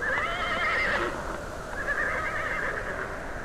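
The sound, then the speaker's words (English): A horse, one of a team hitched to a light sled during a storm, neighs loudly, a long quavering whinny that trails off and then rises again, over a steady rushing background noise. “hitched a team of horses to a light sled and started after the children to bring them home.”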